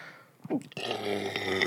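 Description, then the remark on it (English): A short, croaky burp from drinking seltzer rises and breaks off, followed by a longer, rough rasping sound that holds steady to the end; no talking. “Jeez, the seltzers just give you the burps.”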